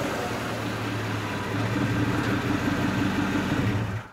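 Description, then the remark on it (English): A car arriving outside an apartment building idles with a steady, low mechanical rumble, even in loudness throughout, then quickly drops away at the very end. No one speaks. “We see Owen's car arrive outside True's apartment building.”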